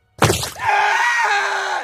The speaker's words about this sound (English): Rima and Sushant screamed as their torsos crashed into the monument of agony. Bones cracked at first contact